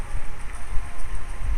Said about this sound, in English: Gosh, it is really windy all of a sudden. Can you hear that, friends? It's a lot of wind.